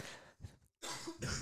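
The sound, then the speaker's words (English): A fairly loud run of harsh coughs: a few quick bursts, a brief pause, then two heavier coughs with a throaty edge. There's no talking. “I feel like you're probably worried about why I'm coughing so much.”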